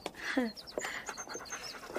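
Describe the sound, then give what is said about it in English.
A dog pants in quick, breathy bursts, with a short high whine slipping in near the start. “who's this? Snap, Miss Matilda's dog.”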